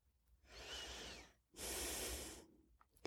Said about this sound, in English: Let's begin to deepen our breath, a quick way of calming down.